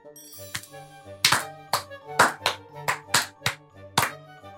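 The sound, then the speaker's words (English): A short round of applause for the Dungeon Master: about eight sharp hand claps in an uneven rhythm, ringing out over a steady, sustained musical tone in the background. “I mean, I think he deserves a round of applause for it.”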